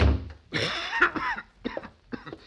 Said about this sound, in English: Hey, you got an awful bad cough there